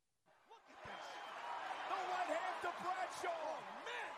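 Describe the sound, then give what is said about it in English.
In a wrestling match, a wrestler lands repeated piston-like thudding punches over a loud, roaring crowd, the dull impacts coming in quick succession amid cheering and shouting voices. “These piston punches are awesome.”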